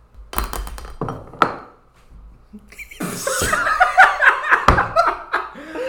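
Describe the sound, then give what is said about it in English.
A drinking glass gets knocked over and spilt with a couple of sharp clunks and a brief clatter, followed by a pause and then a burst of laughter from several people. “I just spilt my glass.”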